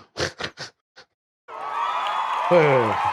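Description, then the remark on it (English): An applause and cheering sound effect: a few brief vocal bursts give way to a sudden, sustained roar of crowd cheering and applause, with a loud whoop rising out of the noise near the end. “And where's the clapping?”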